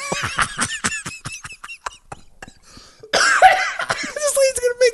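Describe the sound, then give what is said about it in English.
A rapid string of short, sharp coughs, then a louder, denser fit of harsh coughing with strained, wheezy tones, with no talking. “Here I'm coughing.”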